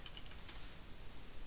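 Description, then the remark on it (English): A few quick, quiet keystrokes clack on a mechanical keyboard in the first half second, then soft room noise with no talking. “Tap, tap, tap. Mechanical keyboard.”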